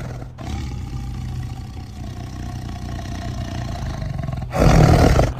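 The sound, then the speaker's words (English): A big cat howls in indignation while lunging for a cub, a long, low, rumbling snarl that holds steady for several seconds, then surges into a louder, harsher roar just before the end. “Haka veers outward and away from me, howling in indignation and lunging for the cub.”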